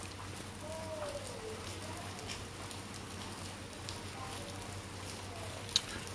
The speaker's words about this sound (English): It's raining right now.